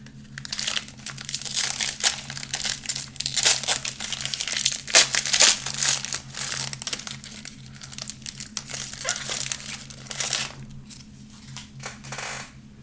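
A 2023 Donruss UFC trading card pack's foil wrapper being torn open and crumpled, with continuous crinkling and crackling bursts over a low, steady hum. No one speaks.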